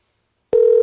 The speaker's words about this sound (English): We're calling him on Skype because I think the audio will be better. I suspect it will be better.